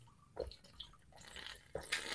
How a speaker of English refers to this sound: You're drinking water, right? Yeah.